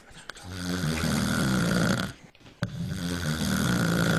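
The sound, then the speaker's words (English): A person snoring in sleep: two long, rattling, throaty snores separated by a brief quiet pause, loud, with no talking. “let's talk about our sleepers of the week”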